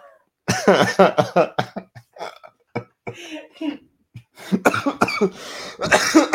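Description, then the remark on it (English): A loud coughing fit: rough, throaty bursts come in quick clusters, break off into a short lull, then start up again even harder toward the end. “Dude, this cough is killing me.”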